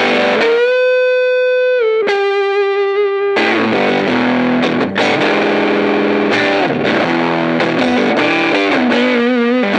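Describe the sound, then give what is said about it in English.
Overdriven tube-amp electric guitar with the gain turned up, loud and saturated, opening with a sustained held note, then a busy run of distorted notes and bends with thick, buzzing harmonics. No talking. “And you can definitely get a nice volume boost, but then gain up from there and it'll make the tubes scream, as they say.”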